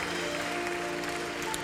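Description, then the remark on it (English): An audience in a church claps in thanks to God during worship, a steady, dense wash of applause, with a low sustained hum of organ or voices underneath. “You want to clap?”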